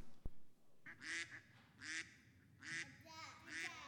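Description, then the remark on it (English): A person imitates a duck, making four nasal, raspy quacks in a steady rhythm, fairly loud, after a brief click at the start. “I'm going to make a sound, and I want you guys to tell me what you think it is.”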